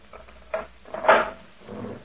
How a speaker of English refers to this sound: Hey, you may open the cell door for me, Sergeant.